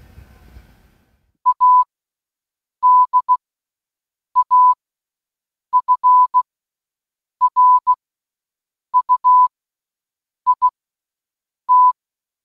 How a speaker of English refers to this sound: I can pick up this Clue, which is also on battery power, and let me send O, and then I'm going to send K. There you go. So wireless Morse code transmission between two Clue boards using Bluetooth.